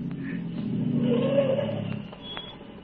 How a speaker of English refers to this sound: And then I heard another sound on the road. There was a car coming.